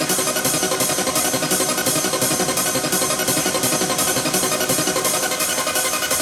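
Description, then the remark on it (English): A clean, undistorted audio test wave: a steady, loud, buzzy tone, rich in overtones, pulses in a regular rhythm of roughly two beats per second for several seconds, with no talking over it. “I'm going to play that to you and I switch it in and out so you can hear the effect and the difference in the sound. So here it is, clean.”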